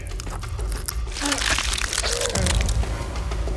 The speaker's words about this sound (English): I squeezed the glass shard tight between my fingers and then pressed it against the wound, sawing at it until a chunk of flesh ripped free.